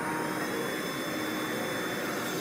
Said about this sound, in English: That isn't the mouse revving its engines, it's spinning up a propeller. And while flying over the walls is against the rules, there's nothing in the rules against a mouse vacuuming itself to the ground to prevent slipping.